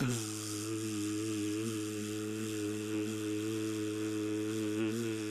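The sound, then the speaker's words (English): A person records themselves humming a steady, low-pitched vocal buzz, imitating a buzzing sound, to layer later with a hiss. It holds one pitch for about five seconds at an even, moderate loudness, with no words. “I'm going to record myself buzzing and hissing, and then we're going to lay it over each other and see what it sounds like.”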